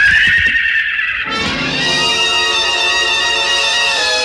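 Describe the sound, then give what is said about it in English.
A stallion named Sun Prince lets out a loud, shrill neigh as it rears high, its high whinny wavering and trembling for several seconds before trailing off, with no voices present. “The stallion reared high, pawed at the gathering darkness.”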